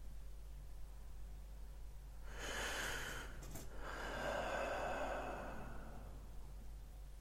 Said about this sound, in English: It's weird because my eyes are closed and I'm breathing through my mouth, and the cool air is sort of going into my mouth and covering the top of my tongue, and I can feel it in my throat, and it feels quite nice.